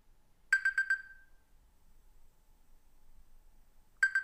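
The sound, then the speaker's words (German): An alarm clock rings in a quick burst of four bright, high-pitched electronic beeps that trail off, then after about three seconds of quiet another burst begins. No one speaks. “Ach, nur der Wecker.”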